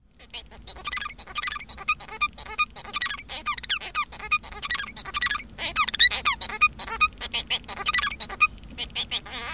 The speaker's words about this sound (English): the Bengalese finch has produced a type of song that has these elements that repeat over and over again